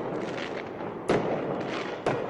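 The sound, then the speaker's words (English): Two sharp fireworks bangs, set off at night by street protesters in Columbus, Ohio, burst out about a second apart over a dense, steady roar of crowd noise outdoors, each blast loud and sudden before fading back into the din. “Some in the crowd last night set off fireworks.”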